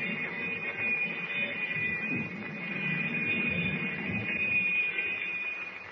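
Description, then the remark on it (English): A submarine's 30-second warning bell before torpedo fire rings continuously and steadily, a shrill high tone held without pause over a low engine-like rumble, fairly loud throughout. “But even as the alarm bell echoes through the submarine,”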